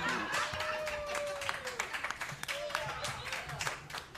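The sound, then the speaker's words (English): A short burst of applause, many hands clapping in a dense, steady patter for a few seconds, with a sustained vocal whoop or cheer rising over it. “Applause break for Lauren gets a point”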